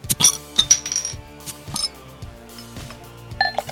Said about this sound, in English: So let's crack those beers and have some fun.